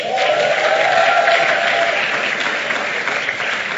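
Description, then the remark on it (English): An audience claps steadily and loudly, a dense, continuous wash of many hands with no pauses, a murmur of voices faintly mixed in, holding strong throughout before easing slightly near the end. “If you want to clap, clap.”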